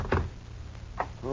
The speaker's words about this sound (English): Slowly you open the door.